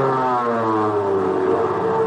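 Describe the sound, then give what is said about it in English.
A steady, loud droning roar of light bomber plane engines from a U.S. carrier on maneuvers in the Andaman Islands, layered with a low buzzing hum and a slowly wavering pitch, continuing unbroken with no voices. “Where do those planes come from? They're light bombers from a U.S. carrier on maneuvers in the Andaman Islands.”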